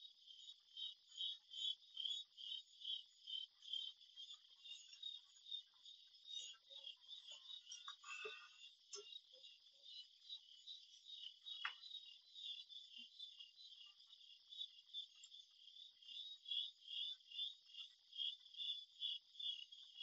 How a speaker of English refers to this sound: Right now, the dog has stopped barking, and I hear the crickets on a beautiful evening.